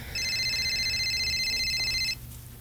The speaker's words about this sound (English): Oh, shit. Wait, is that another one? No, it's just a regular phone call from my girlfriend.